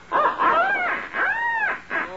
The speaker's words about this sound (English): I think I'll practice up with my duck call a little.